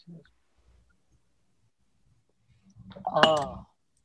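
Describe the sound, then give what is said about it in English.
A single sharp clink of two ceramic coffee cups tapped together in a toast near the end, fairly loud, overlapping a brief voiced sound after a mostly quiet stretch. “Cheers.”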